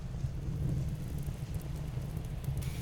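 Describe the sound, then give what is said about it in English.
Steady rain pours down with a deep, continuous rumble of thunder rolling underneath, a dense, even wash of sound with no voices. “Finn just feels bad that Lettuce is outside getting rained on, and so thinks they should probably hurry up.”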